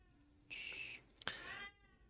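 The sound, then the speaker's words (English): A cat meows, first a steady, high-pitched cry, then after a sharp click a second meow that slides downward in pitch. No one speaks over it. “quiet, cat.”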